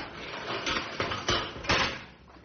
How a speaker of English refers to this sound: Get ready to open the cage door.